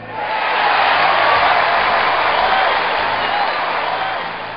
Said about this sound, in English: Crowds of people are standing. They jump up and down, shouting. The people are full of joy. Their team won the game.